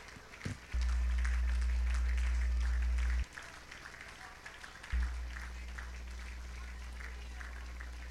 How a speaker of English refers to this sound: Can you lay your Bibles down, lift up your hands, clap unto the Lord, and just thank Him for the word of the Lord today?